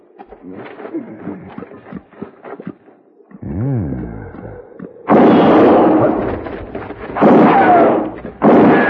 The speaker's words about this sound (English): Had enough? Answer me or I'll shoot again.